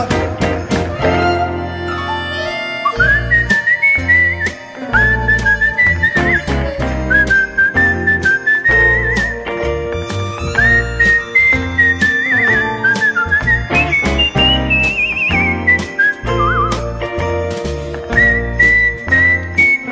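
A person whistles a lilting melody loudly and continuously, the bright tune rising and falling over a steady backing of music with a thumping beat.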